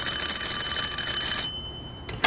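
A bright, metallic electric doorbell at a home rings continuously for about a second and a half, stops abruptly, then gives a short second burst at the end. No one speaks.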